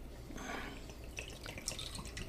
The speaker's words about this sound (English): Oop. That's a big pour. It is. You're spilling everywhere. It's a little more than I wanted. You're spilling everywhere, buddy.